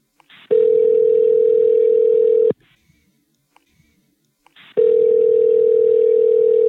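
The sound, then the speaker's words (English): A steady telephone line tone sounds in two long, even bursts of about two seconds each, separated by a quiet gap, clear with no voices, while a call is being placed. “So let's just call him and find out.”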